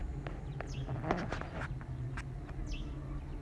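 A few scattered bird chirps ring out over a steady low outdoor rumble on a penthouse rooftop, mixed with light tapping or footstep-like clicks; no one speaks.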